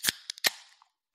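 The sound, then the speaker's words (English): A Lone Star tall boy beer can cracking open: two sharp metallic snaps with a few faint clicks between them, followed by a brief fizzing hiss that fades out. No one speaks. “This is a Lone Star tall boy, no glass needed, straight into the koozie.”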